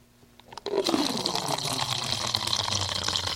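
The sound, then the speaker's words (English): Wine pours steadily into a glass after a brief quiet start, a continuous gurgling splash that holds at an even level until the end. “Are we ready to pour?”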